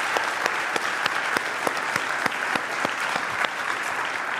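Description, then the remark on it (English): A church crowd applauds steadily to honor their pastor, a dense wash of many hands clapping at an even loudness, with a few sharper individual claps standing out throughout. “Can we clap for him?”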